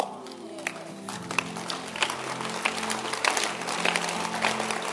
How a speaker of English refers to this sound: But I don't know why they are clapping.